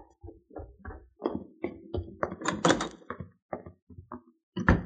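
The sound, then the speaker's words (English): A back door is opened and shut as someone comes in, with a string of wooden clunks, rattles and knocks over a few seconds, ending on a firm thump. No one speaks. “I put the cow in the barn and came in through the back door.”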